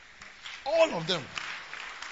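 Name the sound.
weak audience clapping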